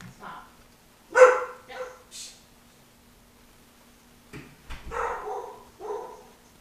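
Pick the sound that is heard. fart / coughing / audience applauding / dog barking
dog barking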